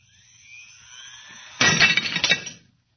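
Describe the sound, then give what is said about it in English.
A thin, rising whine builds for a moment, then a glass standing on the edge of a table suddenly shatters in a loud burst, with fragments crashing and tinkling for about a second before cutting to silence. “Watch closely what happens to that glass on the edge of the table. Watch. It's amazing. The glass was shattered.”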